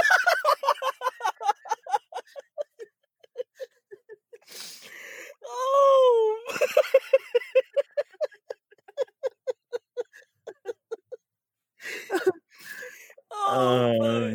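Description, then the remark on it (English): A bird calls loudly in rapid bursts of harsh, stuttering squawks, broken up by a few longer wavering, whining cries. “Hey, I guess that bird can't escape, though.”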